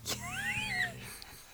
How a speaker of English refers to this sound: I don't even hear it anymore because it's so normal, but yes, that is Charli snoring. That's wonderful. Should I put the microphone really close to her face? I don't know. I mean, I can hear it, so I'm guessing the listeners probably can too.